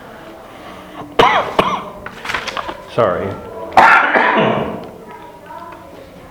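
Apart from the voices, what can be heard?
coughing and throat clearing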